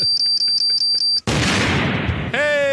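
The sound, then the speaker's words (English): A steady series of electronic beeps cuts off into a single loud gunshot sound effect from a Nollywood film, its noisy blast ringing and fading over a second, then a whistling tone rises in. “I want to hear gunshot in the air. That was Nollywood. It was effects.”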